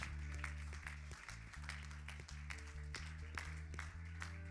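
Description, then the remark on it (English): A church audience applauds steadily for several seconds to welcome a guest speaker, a dense wash of clapping with sharper accents, while sustained keyboard or organ chords play underneath. “Could we welcome him and could we welcome the presence of God in Jesus?”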